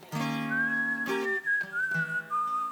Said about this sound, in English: Do the whistle. Well, okay, you try. That's your job. Let's see if my whistle works here.